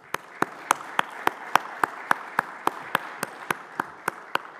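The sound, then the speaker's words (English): A round of applause from an audience honoring Coach Paul Johnson as a 2023 College Football Hall of Fame inductee: a dense wash of clapping, with sharp, evenly spaced claps about four per second standing out on top. No voices are heard. “Please join me in a round of applause honoring Coach Paul Johnson as a 2023 College Football Hall of Fame inductee.”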